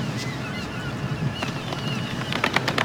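Soft, polite applause: a few scattered light claps, then a quicker, denser run of gentle claps at the end, over a low steady background hum.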